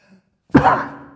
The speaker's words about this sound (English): But boy, when you cough into a microphone, it sure sounds that way. Sorry about that. My bad.